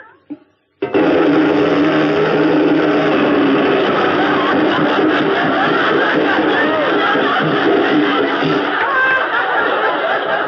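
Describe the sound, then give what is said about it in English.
After a brief pause, a voice imitates a riveter's hammer: a loud, continuous rapid-fire rattle that holds steady for about ten seconds without letting up. “A riveter's hammer.”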